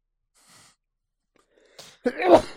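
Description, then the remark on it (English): A single loud sneeze bursts out after a faint breath and a quick sharp inhale, with a forceful, breathy explosive release near the end. “Bless you.”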